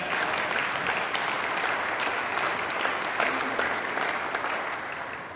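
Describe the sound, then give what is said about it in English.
An audience applauds steadily to thank the person who runs its online worship, a dense wash of many hands clapping at an even level that tapers slightly at the end, with no voices standing out. “Clap for him.”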